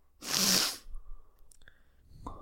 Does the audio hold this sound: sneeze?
yes